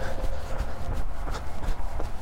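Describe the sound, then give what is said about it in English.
Steady rhythmic footfalls of someone on a nighttime run at Brown Moor Wood, soft thuds landing roughly every third of a second over a low, constant background rumble, with no voices. “Okay, so it's nighttime run. Let's get going.”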